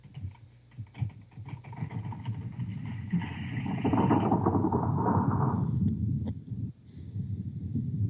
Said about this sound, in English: Smart display is like, yes, really ruffling. So listeners, that means that while you hear the earth quaking, you should be standing on top of your chair and jumping to the bed and the ottoman with your kids, because the floor is lava